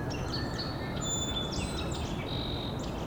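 A song sparrow sings a series of bright whistled notes and quick trills over a steady low rumbling background noise.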